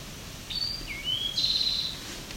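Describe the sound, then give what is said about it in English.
A wild bird sings a short three-part song: a high whistled note, a lower slurred note, then a longer high buzzy note, heard alone over faint background hiss. “I don't know if this is the same bird as from earlier.”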